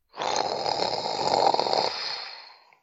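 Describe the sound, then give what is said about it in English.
A person makes a single long, rattling snoring sound, drawn in loudly, with a raspy, buzzing texture that fades out at the end; no talking. “Another snore?”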